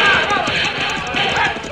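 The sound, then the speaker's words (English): Horse hooves gallop in a fast, steady drumming rhythm, loud, with a dense wash of noise and faint voices mixed in underneath. “Riders come this way.”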